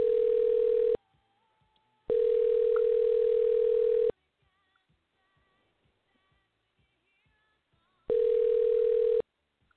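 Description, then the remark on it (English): A telephone ringback tone purrs in long, steady bursts with silent gaps between them, loud, as an outgoing call to a friend rings unanswered. Faint clicks and small noises fill the pauses. “Don't pick up the phone. She's calling everybody.”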